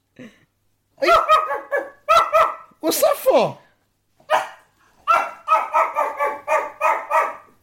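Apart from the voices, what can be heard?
dog barking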